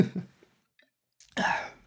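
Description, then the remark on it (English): Someone takes a gulp of beer: two soft, low swallowing sounds, a silent pause, then a loud, breathy satisfied exhale that fades out. “Okay, now I'm going to wash it down with this beer.”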